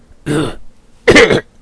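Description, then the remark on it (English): Two harsh, rasping, dry coughs, fairly loud, each lasting about a third of a second, with a short pause between them and no talking around them. “My cough is rattling dry." And coughs in confirmation horribly.”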